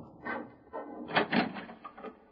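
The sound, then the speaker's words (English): Two or three knocks rap on a wooden door, spaced unevenly and fairly soft, with no voices. “oh, with the door. Stay there. I'll go see who it is.”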